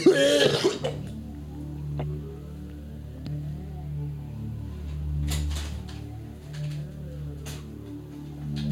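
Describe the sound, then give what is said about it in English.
A hard, harsh cough bursts out loudly at the very start. It quickly gives way to a steady low rumbling drone with scattered faint clicks. “Oh, that hard cough is”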